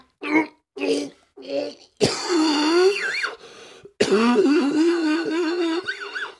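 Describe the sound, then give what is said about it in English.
A loud coughing fit: three quick harsh coughs, then two long strained bouts of hacking with wheezy, voiced gasping and throat-clearing between them. “Oh, you ever cough and get lightheaded?”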